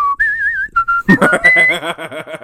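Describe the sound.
Someone whistles a bouncy, jazzy basketball team theme while characters toss a severed head back and forth in a game of Monkey in the Middle, clear wavering notes sliding between pitches, with a buzzy hummed or vocal accompaniment joining partway through and carrying the rhythm.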